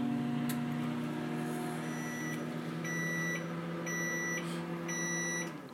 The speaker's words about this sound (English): We're going to start, though, this mixture in the microwave oven, and we're going to give it 2 minutes to start now.